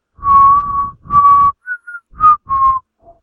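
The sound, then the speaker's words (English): A person whistles the children's hymn "Jesus Loves the Little Children" as a slow, simple melody of about seven sustained and short notes, clear, with breathy pauses between phrases and no talking. “Whistling it.”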